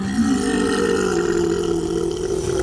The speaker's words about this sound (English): A horrendous sound echoed throughout the night, like a giant organic pump wrenching something from the depths. The sound of something colossal retching assaulted the group's ears.